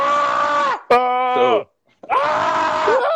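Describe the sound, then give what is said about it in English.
Loud, sustained human screams in a magic word scream-off, in three bursts: a long strained yell, a brief tonal shriek, a pause of silence, then another drawn-out scream, all intense with no talking. “now in our shows, what we're going to do to make sure that you don't pass out and waste your phone battery, because anyone who's listening has an earbud in and they might be dozing off, every 10 minutes, we're going to have the magic word scream off.”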